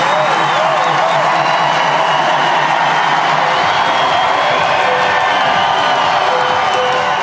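A large stadium crowd gives a standing ovation welcoming world number one player Serena Williams, roaring with sustained cheering and applause, loud and dense throughout, growing louder, with scattered whoops and shouts rising above the steady wash of clapping.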